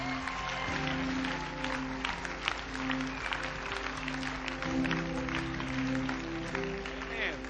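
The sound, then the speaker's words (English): Sustained crowd applause, a dense steady patter of many hands clapping for several seconds, with low held musical tones humming underneath. “Let's give them a great clap tonight.”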